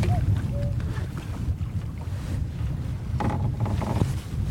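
Steady wind buffets the microphone outdoors while someone is fishing, a continuous low rumbling roar that swells slightly near the end, with a few faint high tones briefly rising above it.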